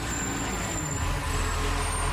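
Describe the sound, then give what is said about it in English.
A garbage truck picks up trash put out on the curb, its heavy diesel engine rumbling steadily with a faint high whine from its machinery, fairly loud, with no voices. “Some of us hear this sound a couple mornings a week, the sound of a truck picking up the trash we put out on the curb.”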